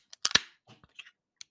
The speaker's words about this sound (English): And what you didn't see was it had that perfect little spray when I opened it. Like it was like, like a beer commercial.